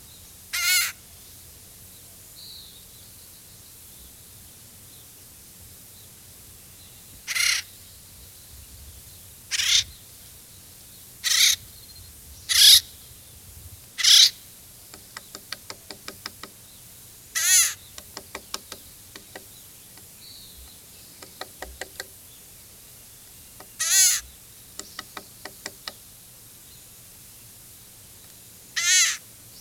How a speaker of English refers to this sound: With so many individuals around, they can be a noisy bunch. Flip through your field guide to find the acorn woodpecker as we play their call.